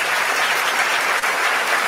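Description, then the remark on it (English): Steady, dense applause from a group of people, a continuous wash of many hands clapping at an even, fairly loud level throughout, with no voices standing out. “I'll give that nigga a round of applause right now.”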